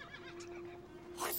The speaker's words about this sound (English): Horses!